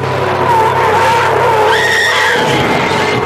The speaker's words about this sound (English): What's that? It was the car crash.